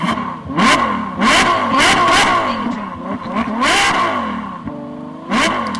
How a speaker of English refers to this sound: Start your engine.